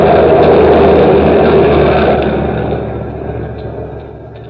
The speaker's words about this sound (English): These drivers. It's that truck. Wants to get to the street.